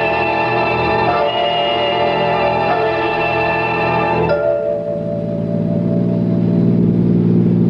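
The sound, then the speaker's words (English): A car engine roars loudly and steadily, its tone shifting abruptly partway through as the car is driven recklessly fast around curves, then settling into a lower, rumbling drone. “I drove Alan Carlin's car like a reckless idiot, taking every curve as if it was a race course”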